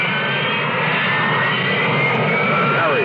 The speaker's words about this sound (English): What is a Harrier? It isn't a helicopter, but it could land in your backyard. Harrier. It isn't a conventional jet, but it can match the speed of sound.